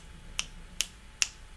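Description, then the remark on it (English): Three crisp finger snaps at a steady, even pace, each a sharp bright click standing alone against a quiet background, like beat-poet applause. “And I would applaud you if that wouldn't really mess up the sound. Go ahead, do it. I'll beat poet you.”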